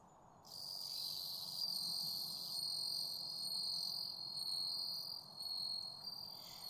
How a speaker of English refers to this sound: The bell cricket has a special song, high and clear, and, well, bell-like. The music it makes each autumn cheers those who hear it.